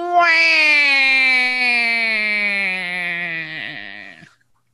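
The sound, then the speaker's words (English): A person imitates a goat's bleat, a "bah", in one long, strained, nasal note held about four seconds, ending in a shaky, quavering wobble before cutting off. Loud, with no other sounds. “Now you do the bah for the power goat.”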